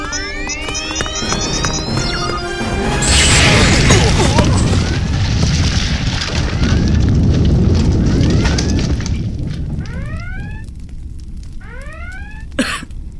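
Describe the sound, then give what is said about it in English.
An overloaded phaser explodes in a large blast about three seconds after whooshing, chirping sci-fi tones, then rolls on as a loud, deep rumbling roar that slowly fades, with warbling electronic sweeps returning afterward. “We registered a large explosion near your position.”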